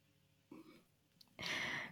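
A single sneeze: a short breathy intake, a brief pause, then a loud, hissing burst of air lasting about half a second. No talking around it.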